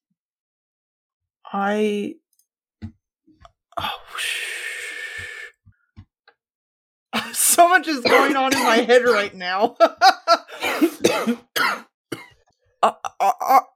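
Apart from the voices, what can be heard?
coughing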